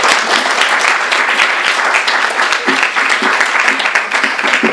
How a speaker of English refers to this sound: Let's please give them a warm round of applause.